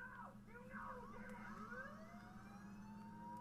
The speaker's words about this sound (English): Siren wailing. We got subtitles on.